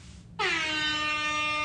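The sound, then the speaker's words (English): A loud air horn blasts suddenly and holds one steady, brassy tone with rich harmonics, sustained without a break after a brief low rumble at the start. “We gotta get the horns for that.”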